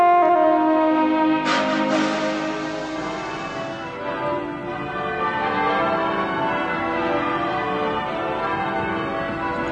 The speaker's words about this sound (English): Church bells peal with ancient attraction for our ancestors. The bells convey a call to worship, go to war, or simply to celebrate a monarch's birth, marriage, or mourning. It's always important and tuneful to the human ear.